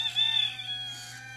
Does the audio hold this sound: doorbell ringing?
no